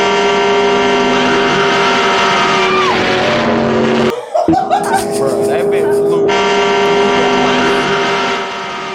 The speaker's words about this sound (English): Horn is ignorant. That shit like, speared I wouldn't want to hear that shit if I'm about to die. That car was ignorant. That horn. Sound like a train coming. The movie you talking about is Maximum Overdrive. Yeah, the trucks.